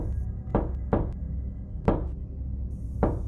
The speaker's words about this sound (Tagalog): Parang dibilang ang bawat pagtatama ng kanyang kamao sa dekahoy kong pintuan.